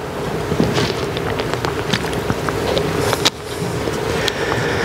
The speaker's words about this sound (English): I still hear pages rustling. Everybody there? John 13, verses 34 and 35.